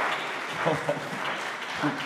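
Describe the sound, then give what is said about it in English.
An audience claps steadily in a dense, continuous wash of many hands, with voices calling out faintly over it throughout. “The way you are clapping, I see you have just entered into the house of God.”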